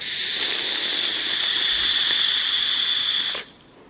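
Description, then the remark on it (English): A steady, airy hiss of open airflow drawn in through the airflow hole of a vape tank, bright and breathy, holding at an even level for about three and a half seconds before cutting off abruptly. “That's where all your airflow is coming in, and it's pretty open, swooshy airflow.”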